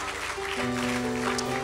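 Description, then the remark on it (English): An audience at a church service claps steadily and densely in continuous applause as a hand clap of praise to the Lord, while sustained organ or keyboard chords ring underneath, the chords entering partway through and holding. “Come on, give the Lord a hand clap of praise for the great love of the Lord.”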